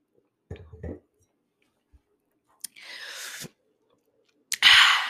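A brief thud, then two soft, airy slurping sips of wine, each lasting under a second, with quiet pauses between and no talking.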